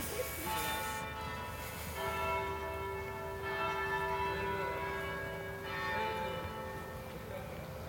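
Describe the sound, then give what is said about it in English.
Church bells ring out two o'clock in a series of resonant, overlapping tolls, each strike lingering and humming into the next, from a cathedral beside a cobbled courtyard between a museum and the cathedral on a sunny day, over faint outdoor ambience with no one talking. “Oh, there's the bells.”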